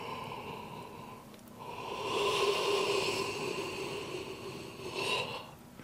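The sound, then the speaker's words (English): A long, drawn-out yawn from a person, breathy and voiced, swelling in the middle and trailing off with a final exhale over about four seconds. “I want you to feel the yawn and yawn as much as possible.”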